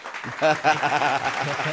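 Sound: clapping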